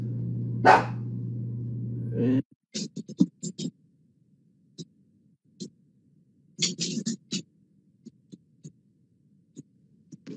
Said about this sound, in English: My dog's going to bark like a jerk.